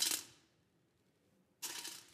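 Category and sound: sound effect, two coins dropping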